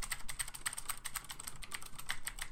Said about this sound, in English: insert two copies of the typing audio here.